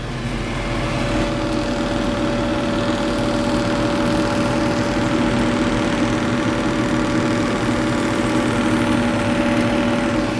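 Food sizzles steadily in a frying pan for about ten seconds, a continuous crackling hiss over a constant low mechanical hum, with no one speaking.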